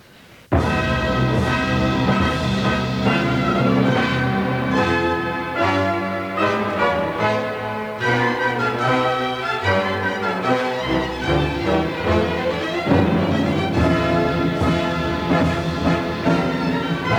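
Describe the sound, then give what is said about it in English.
The opening of an opera: a regal, full orchestral brass fanfare bursts in loudly after a brief quiet moment, with bright sustained chords, a heavy kettle drum thump and stately flourishes reminiscent of Baroque opera, continuing without any talking. “The opera begins with a very regal fanfare that's reminiscent of Baroque opera.”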